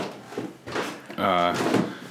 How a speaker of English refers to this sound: If you're hearing that in the back, that is some creaky stairs.